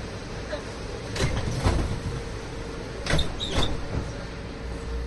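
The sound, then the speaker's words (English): Walt Disney World monorail sliding doors close with two quick pneumatic whooshes and thuds, the second one followed by a brief high chirp, all over a steady, low vehicle hum. “Please stand clear of the doors.”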